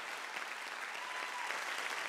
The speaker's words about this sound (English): Come on, give her one more round of applause.